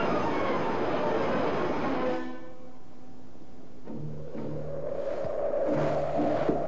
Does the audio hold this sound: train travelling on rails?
yes